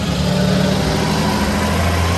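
A school bus engine idles steadily, a low rumbling drone with a constant hum that holds even and loud throughout, with no speech.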